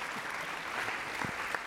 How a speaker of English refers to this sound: Good, so a round of applause for our players, thank you.